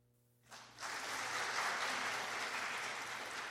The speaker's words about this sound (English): Clap your hands.